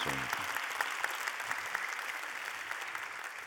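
An audience claps steadily for a few seconds, a dense, even patter of many hands with no voices rising above it.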